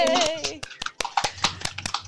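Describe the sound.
A small group claps their hands, sharp irregular slaps coming quickly for about two seconds, with a cheerful voice calling out at the start.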